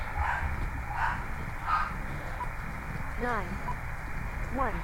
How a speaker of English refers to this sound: Quit that barking. Oh, it's not my dog.